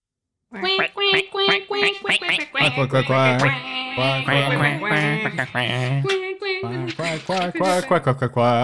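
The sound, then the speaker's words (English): Several people make loud, rapid duck quacks with their voices, nasal honking bursts tumbling over one another almost continuously for several seconds. “So if anyone else wants to make duck noises while I grab that pen and paper.”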